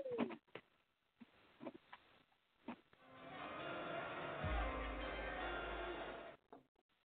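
An owl-hoot sound effect plays in short, cooing calls near the start, followed by a loud, sustained rushing wash with a deep rumble that fades out abruptly. No one speaks.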